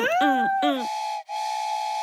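A steam train whistle gives two quick, swooping blasts, then settles into a long, steady, shrill tone wrapped in hissing steam, broken by one brief dropout. It is loud, with no one talking.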